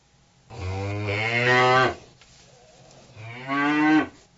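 A cow moos twice, loud: a long, drawn-out low call, a brief pause, then a shorter second moo. No other sounds accompany it.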